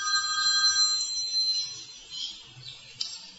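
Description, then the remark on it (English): A cell phone ringtone chirps with steady electronic tones for about a second, then cuts off, leaving faint background hiss and a soft click near the end. No one speaks. “Please turn off your cell phone.”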